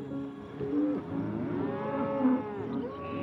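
A cow moos loudly, a long, drawn-out lowing call that rises and falls across a few seconds, with no voices present.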